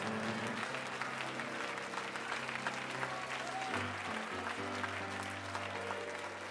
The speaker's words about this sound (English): Would you stand to your feet, clap your hands unto the Lord in this place today?